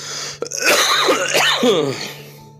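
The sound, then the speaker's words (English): A harsh, raspy cough, one loud drawn-out fit lasting over a second with a throaty, strained edge, then fading into quiet. “She's telling me right now, you know, that cough.”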